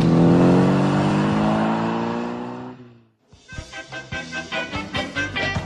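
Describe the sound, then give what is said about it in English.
A taxi engine drones loudly with steady harmonic tones, cuts out briefly, then returns as a series of rhythmic revving surges, prominent with no voices. “Now this taxi, I'm being watched, I'm being followed.”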